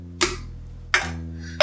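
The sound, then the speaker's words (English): Mugs clink together in a toast three times, each a sharp, bright knock with a brief ringing tone, spaced unevenly about two-thirds of a second apart over a low steady hum, with no talking. “I hope you at home saved a little bit more of that seltzer / vodka / please for love God not tequila at the end of your mug, and we will cheers together.”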